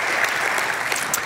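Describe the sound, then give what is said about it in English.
A church audience claps steadily for their pastor in the morning, a dense, continuous patter of many hands forming a bright, even wash of applause with no voices standing out. “Can we clap for your pastor this morning, church?”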